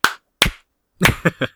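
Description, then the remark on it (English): Hand claps ring out alone: two slow, spaced claps followed by a quicker run of four, building in pace like a slow clap gathering speed. “Is that a slow clap or are you masturbating?”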